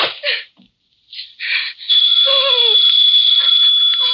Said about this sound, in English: The phone kept ringing and ringing until I guess I went a little crazy.